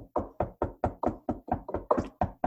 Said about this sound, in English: Could you hear the knocking? I could hear it.